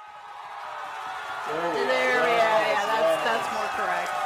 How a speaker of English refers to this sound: How about cheering?